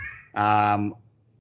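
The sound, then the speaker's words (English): A single loud, drawn-out cat meow, lasting just over half a second with a strong, tonal, whiny quality, then a faint murmur of background noise. “Even your cat got pissed off at that. I know. My cat got upset.”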